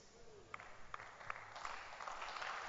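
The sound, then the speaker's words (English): A crowd clapping their hands for grace, starting with a few scattered sharp claps that quickly build into dense, steady applause, moderately loud throughout. “Clap your hands for grace.”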